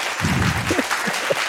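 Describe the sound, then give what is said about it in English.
Sustained audience applause, a dense steady wash of clapping hands that keeps going without a break, with a few brief vocal sounds poking through the noise. “Well, it's a very long applause.”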